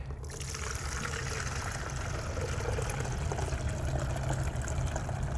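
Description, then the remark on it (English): Water from a sprayer machine being calibrated pours steadily into a measuring container for 20 seconds, collecting 64 fluid ounces; a continuous splashing stream over a low rumbling hum, with no talking. “Now we have caught the spray mixture, or the water in this particular instance, for 20 seconds.”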